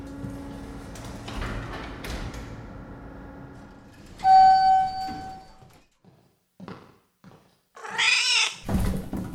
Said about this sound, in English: No! Dumb cat! Everyone knows that when entering a creepy basement, you stick together. Get back here, Shro!